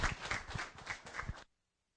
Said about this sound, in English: Thank you. You can clap. Yeah.